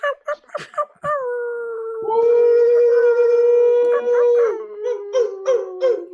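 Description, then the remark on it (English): Several voices in a live broadcast imitate wolf howls, starting with a few short yips before long, sustained wavering howls rise and overlap, then break into choppy yelps at the end. “For those of you listening, go ahead, just join us in a little bit of a wolf howl.”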